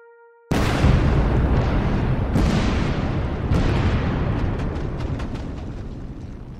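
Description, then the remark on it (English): A faint tone is abruptly cut off by a massive explosion tearing through the hull of the ship Maine in Havana Harbor on the night of February 15th, followed by a long roaring rumble with further blasts and crackling debris as it slowly fades. “On the night of February 15th, an explosion tears through the ship's hull.”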